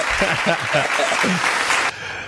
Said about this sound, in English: So before you go, one more round of applause. There you go.